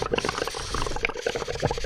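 Continuous bubbling and gurgling as air is blown through a straw into a coffee drink, a busy stream of small liquid pops lasting a couple of seconds.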